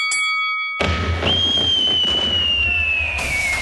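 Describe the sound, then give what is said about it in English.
At a bonfire night fireworks musical display for the 5th of November, a firework whistles with a long, slowly falling shriek over a dense, rumbling crackle of bursts. A brief chiming tone opens the sound before the noisy barrage begins. “Remember the 5th of November with an award-winning fireworks musical display.”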